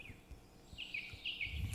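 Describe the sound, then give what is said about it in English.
Birdsong sound effect: a quiet run of short, high chirping notes repeating every fraction of a second, with soft low thumps underneath and no one speaking. “Wow, there's all birds right. in this venue.”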